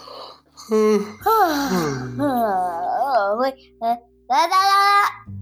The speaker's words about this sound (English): So? Let's end with a yawn. I think that would be appropriate.